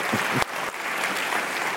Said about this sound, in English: That lone San Franciscan that applauded.